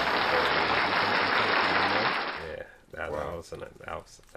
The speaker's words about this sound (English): I like that one. Can we get a round of applause for that one?